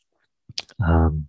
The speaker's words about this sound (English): Have your sip of water available, your liquid. I'm taking that sip.